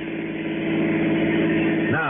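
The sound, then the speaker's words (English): A car in L.A., with luggage piled in the back, idles with a steady harmonic hum, then swells louder as it pulls away, its pitch shifting near the end. “I piled my luggage into the back of his car and we took off.”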